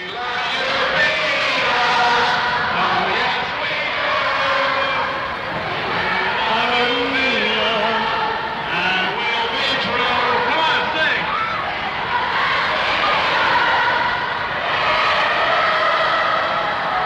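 A huge concert crowd roars and screams without a break, a dense, loud wall of high-pitched shrieks and cheering that swells slightly and stays intense for the whole stretch.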